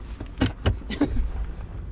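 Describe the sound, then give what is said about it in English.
A car creeps into a parking space at a drive-in theater: a steady low engine rumble, broken by a few short mechanical whirs and soft clunks, with no one talking. “Well, I ended up with a 2-minute recording of my mom and I bickering over how to pull into the spot”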